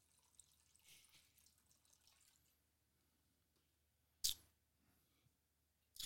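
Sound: pouring a drink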